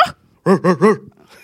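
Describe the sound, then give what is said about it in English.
Three quick, yelping barks from a human voice, mimicking a wolf or dog, each rising and falling in pitch, with a short breathy sound before and quiet afterward. “A wolf.”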